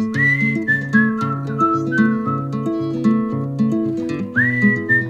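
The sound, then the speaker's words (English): A whistled melody floats above steady, mellow instrumental accompaniment, holding long notes at the start and again near the end, clear with no talking. “….”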